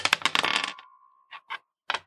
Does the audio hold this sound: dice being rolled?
yes